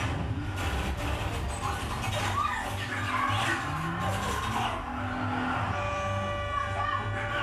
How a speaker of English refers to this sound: Think about being the passenger in this car with this person driving like a madman. You'd be scared shitless. You'd be more scared if you were in the passenger seat than the driver's seat.